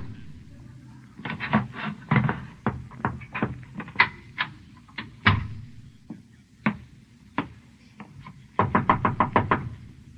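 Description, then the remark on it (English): Knocking on a door comes in uneven clusters of sharp raps, fairly loud, ending in a quick run of rapid knocks over a low background rumble. “Who is it? It's me. The door's unlocked.”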